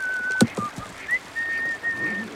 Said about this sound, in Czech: Pokládá proutěný koš s jídlem. Začíná si pískat.